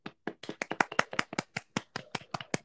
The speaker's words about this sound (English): The website is done. So Ah! we're gonna clap for that.